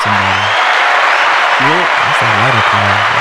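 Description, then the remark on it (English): A round of applause welcoming a co-host on a show: steady, dense applause from a crowd fills the whole clip, loud and continuous, with brief voiced cheers or shouts rising and falling in pitch beneath it. “Yeah. That's a round of applause.”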